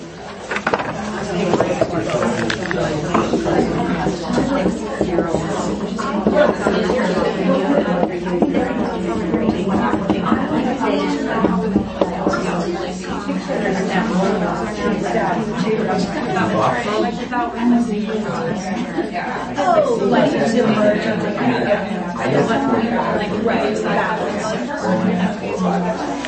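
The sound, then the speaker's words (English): An audience seated in small table groups talks at once for about 60 seconds, discussing burning questions about iPad activities and projects: overlapping conversations forming a steady, dense murmur of many voices with occasional laughter, continuous at a fairly even level. “Take 60 seconds, talk at your table, and I'm going to write them on the board.”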